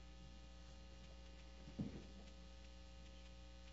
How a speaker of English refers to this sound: We got a major hum up here. Do we mute those?